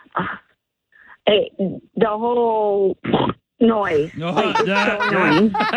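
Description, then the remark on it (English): A person imitates a pig, making a series of loud nasal oinks and snorting grunts in short bursts, ending with a longer run of squealing grunts. “Noise. I mean, they're pigs.”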